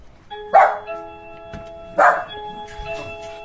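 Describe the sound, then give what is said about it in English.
Two loud barks, about a second and a half apart, from excited dogs named Dolly and Mabel greeting a visitor at the door of a house. A steady ringing tone is sustained underneath, with quieter scuffling sounds between the barks. “I'm outside a very good friend of mine's house, and I'm about to knock on the door and meet some very special dogs of hers called Dolly and Mabel.”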